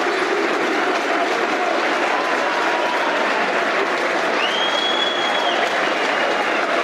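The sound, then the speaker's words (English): A large crowd at a Millwall football match at The Den applauds steadily as Tom Bradshaw limps off, substituted, a dense, unbroken wash of clapping that stays loud throughout, with a brief whistle-like tone rising midway through. “Good applause.”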